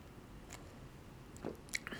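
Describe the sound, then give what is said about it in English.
A quiet sip of beer, with soft wet slurping and a few small mouth clicks near the end, against a hushed background with no talking. “I'm going to take one more sip.”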